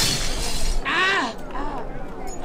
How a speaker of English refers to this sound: They call me the glass walker at Venice Beach. Well, I walk in broken glass. See, look down here. See, these are bottles from the bar, alcohol bottles. I break them up and I walk in there.